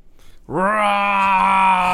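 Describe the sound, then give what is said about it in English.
A person's voice imitates a T-Rex roar for a character transforming into a T-Rex during a game: after a brief quiet moment, one loud, sustained bellow at a steady, fairly mid pitch is held to the end, more a drawn-out yell than a growl. “That's the pansiest yell of a T-Rex I've ever heard.”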